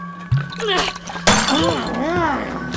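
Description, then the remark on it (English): A glass whiskey bottle shatters against a man's forehead during a fight in a single loud, sharp crash midway through, surrounded by wordless vocal groans and strained cries over a steady low hum. “It shatters against his forehead and spills down his ragged coat.”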